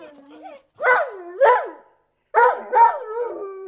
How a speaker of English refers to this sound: All four were awakened by a terrific bout of barking from Timmy. He stood at the bedroom door, scraping at it, trying to open it, barking at the top of his voice.